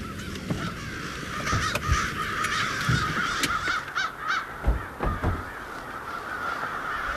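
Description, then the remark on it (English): A dense chorus of thousands of crows cawing over one another in the trees along a river, harsh overlapping calls rising and falling continuously with a few louder caws standing out from the steady din. “there are probably thousands of birds just in all of the trees along the river”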